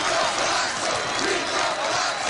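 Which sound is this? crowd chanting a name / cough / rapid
crowd chanting a name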